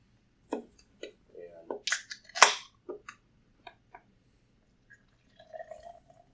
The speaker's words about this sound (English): I'm drinking a Founders Unraveled IPA Juicy India Pale Ale. It says, crack it, pour it, love it. It is 6.6 alcohol by volume. This is a 12-ouncer.